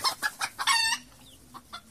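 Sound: chicken clucking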